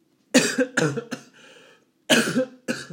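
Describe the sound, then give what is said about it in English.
A person coughs in several sharp bursts, two quick coughs, a third with a rasping tail, then a pause before two more harsh coughs; no talking. “That's why I started coughing.”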